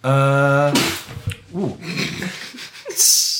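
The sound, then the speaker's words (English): A loud sneeze: a drawn-out voiced intake breaks into a sharp, breathy burst, followed by a few seconds of people talking and shuffling. “Bless you. Yeah, sorry.”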